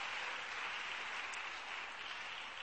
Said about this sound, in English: Clap your hands for these men of God.